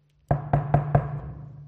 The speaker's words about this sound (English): He knocks on the door. What's going to happen?